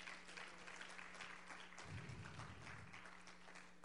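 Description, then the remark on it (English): A large crowd claps steadily and densely for several seconds as a hand clap of praise, a continuous loud wash of hands, with a low hum underneath and a brief rumble midway. “Can we give him another hand clap of praise?”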